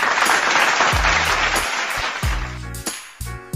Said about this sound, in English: One more round of applause for my dope dealer.